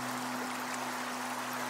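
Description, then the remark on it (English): A steady, even rush of the flowing Water of Leith river fills the scene, continuous, with a low constant hum underneath and no voices. “But it could be that you're wondering why I'm standing by the Water of Leith today.”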